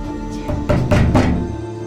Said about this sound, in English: The door shudders. Heavy blows. Hard, violent kicks. Who's there?